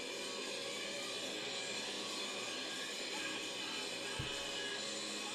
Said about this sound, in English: Hopefully this doesn't have a long intro like the last one. Sounds like a long intro. Lots of war noises, helicopters, gunshots. Extreme.